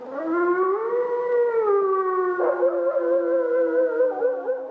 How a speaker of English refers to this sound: If that wolf happens to be howling somewhere nearby, well, then some people grow angry. But taken just as raw animal vocalization, it strikes me as archetypal, primal in its essence.